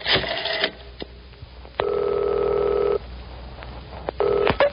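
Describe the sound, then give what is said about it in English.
A special yellow telephone on a distressed oak desk is dialed by a secretary with a few quick clicks, then a steady electronic ring sounds in long bursts separated by a brief pause. It is loud, with no voices. “Immediately, the Commissioner's attractive secretary picks up the special yellow phone on her distressed oak desk and makes contact with the white-winged warrior.”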